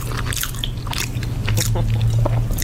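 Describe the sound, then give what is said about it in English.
Wet open-mouthed chewing by a woman eating sloppy joes, with steady smacking and squishing bites and heavy breathing, repeating irregularly over a low steady hum in the background. “This is a woman eating sloppy joes with her mouth open.”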